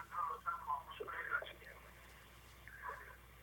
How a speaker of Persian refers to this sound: تلویزیونتون رو لطفا خاموش کنید.